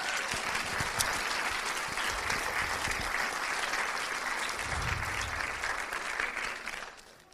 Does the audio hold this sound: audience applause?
yes